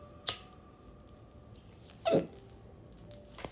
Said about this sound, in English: This is gonna be just an annoying episode with me and the fucking hiccups.